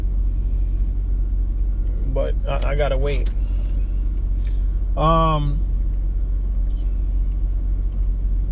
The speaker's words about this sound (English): Or this truck is backing up and blocking the whole street, and he's hitting the garbage cans, and he's almost hitting the cars.